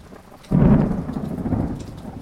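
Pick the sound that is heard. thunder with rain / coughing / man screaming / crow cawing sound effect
thunder with rain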